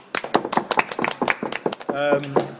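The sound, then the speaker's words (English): A scattered patter of hand claps at a tournament gathering, irregular, trailing off after a couple of seconds into a brief sustained vocal sound. “Sorry, as the applause died down, I just can't.”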